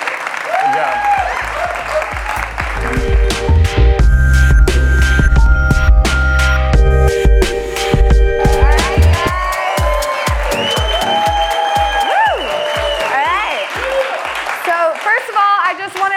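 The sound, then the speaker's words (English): A crowd at a live show bursts into loud, sustained applause for a guest, with scattered cheers and whoops, the clapping dense for about fifteen seconds before thinning into sparser claps as voices murmur underneath. “Let's give it one last round of applause”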